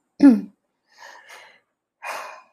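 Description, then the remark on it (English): A voiced yawn with a short falling tone at the start, followed by two softer, breathy exhales spaced apart, with no talking. “that yawning starting already, it must be your lucky day.”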